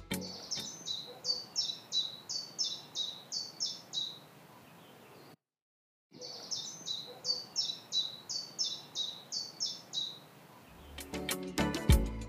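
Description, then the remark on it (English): A chiffchaff sings a steady series of evenly spaced two-note chirps, alternating high and slightly lower pitches, repeated in two clear phrases separated by a brief pause. “fact that it sounds like it's singing its own name, and that is the chiffchaff.”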